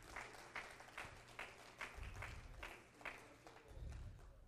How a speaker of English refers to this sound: If you love Jesus, would you just clap your hands to the Lord right now and praise him?